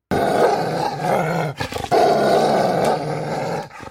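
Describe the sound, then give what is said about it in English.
A wolf growls fiercely while biting down, twisting and tearing, a loud, continuous snarling rumble that breaks off briefly partway through, then resumes with the same savage intensity before cutting out. “I vocalized as I bit down.”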